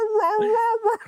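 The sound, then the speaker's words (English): A short, loud electronic sample opens a dance track: a single whining, warbling tone that wavers in pitch for about a second, standing alone without drums or talk. “That wasn't a dog, by the way. That was the start of …”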